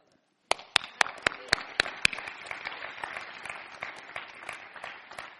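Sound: hands clapping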